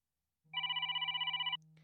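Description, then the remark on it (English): A mobile phone rings with a rapid, warbling electronic trill lasting about a second, over a steady low buzz like a vibrating handset, which keeps humming faintly after the ring cuts off. “Stop vibrating now.”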